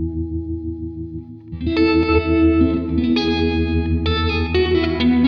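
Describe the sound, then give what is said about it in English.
An electric guitar plays sustained chords through a tremolo pedal feeding into a 63 reverb pedal, shifting to a new chord every second or so, with a washy, shimmering tail and no voices. “I'm going to go tremolo into reverb.”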